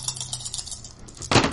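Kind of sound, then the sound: impact, dice being rolled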